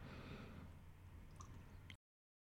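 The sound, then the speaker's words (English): A quiet, steady trickle of smoky whiskey pouring into a glass for about two seconds, with a couple of faint small clinks near the end. No one speaks. “I'll pour you first.”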